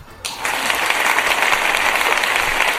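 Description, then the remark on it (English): A burst of applause erupts after a brief quiet start, many hands clapping densely and steadily for a few seconds. “Not sure if that deserves a clap.”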